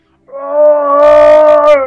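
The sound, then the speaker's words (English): The Star Wars droid BB-8 chirps from the droid socket of an X-Wing, a sustained, steady electronic tone, loud and harmonic-rich, joined partway through by short bursts of hissing static, with no voices. “BB-8 chirps from the droid socket.”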